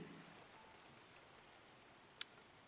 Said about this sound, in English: I see the rain is slackening,